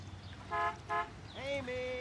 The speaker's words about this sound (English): we hear a honk, honk, honk from the front yard. What could that be?